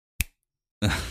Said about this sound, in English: I will snap my fingers, and the two will come together. Ready? Okay, snap your fingers, please.